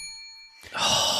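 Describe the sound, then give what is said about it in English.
A single bright ding from a silver hotel lobby bell sitting on a desk rings out clearly with a sustained metallic tone, then is abruptly swallowed by a loud, rushing burst of noise. “What I have is a silver hotel lobby bell”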